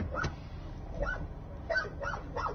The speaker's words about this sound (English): There's another one barking. These firefighters are scared to death. Look, that pit bull's trying to attack three grown men with axes.